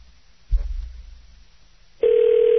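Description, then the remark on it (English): A soft handset clunk, a brief hush, then a steady electronic ringback tone starts loud on the line, an outgoing call placed on air on the Hideout show ringing through with no one talking. “Pick up the phone.”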